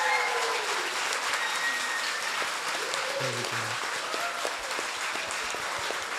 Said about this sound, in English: Well, that takes us to the end of tonight's panel. I think we can give our guests a big, massive round of applause. Well done.